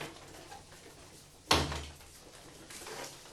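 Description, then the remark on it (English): A door shuts with a single sharp, solid thud that briefly rings out against a faint background hiss and no voices. “Shut the door, nigga.”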